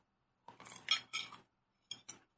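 Cutlery clinking and scraping against a plate while eating a dinner of homemade chicken balls and noodles: a busy cluster of bright metallic clinks, a short pause, then two or three sharper taps, with no talking.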